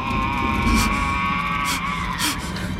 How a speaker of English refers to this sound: Then a throaty, gurgling moaning.